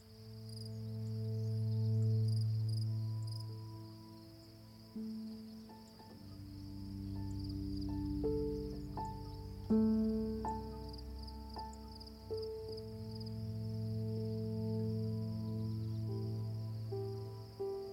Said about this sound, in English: You know, I was out in a park and I was hearing these very similar sounds, the cricket sounds, this afternoon, and it's like, I think it's the first time I've heard them this year, and it's generally like kind of a late summer sound